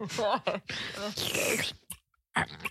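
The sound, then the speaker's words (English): A voice imitates someone sipping a drink: a few exaggerated slurping and breathy gasping sounds in quick bursts, ending with short pauses and a final exhale. “That's you taking a sip of anything.”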